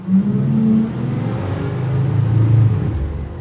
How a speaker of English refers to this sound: Here's the bus with no EQ.